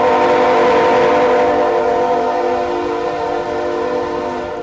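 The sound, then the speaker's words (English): An approaching coal train's horn blares in one long, loud, continuous blast, its chord of stacked tones holding steady throughout and easing only slightly near the end, with no voices. “As the light from the train's headlights gets brighter and the horns get louder and longer, they stay put.”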